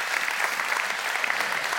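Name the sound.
audience applause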